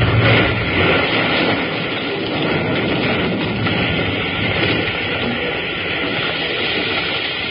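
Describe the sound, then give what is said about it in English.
A train roars past at close range, a loud, steady rumbling rush of wheels and carriages that fills the whole stretch without letting up, with no voices over it. “Come on, that train's right on top of us.”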